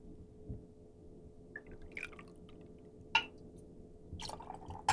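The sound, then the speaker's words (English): One and a half ounces of fresh-squeezed lime juice trickles and drips into a cocktail shaker already holding gin, Campari and Riesling, with a few sharp splashy clinks near the end, fairly quiet against a low steady hum. No one speaks. “One and a half ounces of lime juice, fresh squeezed, please.”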